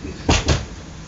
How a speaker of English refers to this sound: Close the door here.